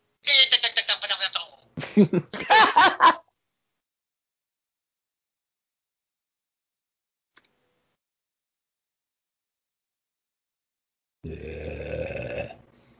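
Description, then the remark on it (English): A loud, buzzy fart rumbles for about a second near the end, following a long stretch of silence; two short bursts of voice-like sound come at the start. “Did you get a fart?”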